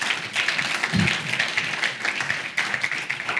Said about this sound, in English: So if you are an elder or pastor at Gospel Community Church, one who's been ordained, please stand up. There's a couple in the room and one who's not in the room. So if you guys could, give them a round of applause.